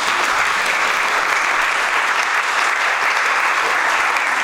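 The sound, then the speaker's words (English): Steady, dense applause from a church audience for twenty years of community meals fills the whole stretch, many hands clapping at an even loudness with no voices breaking through. “You can clap for that one too.”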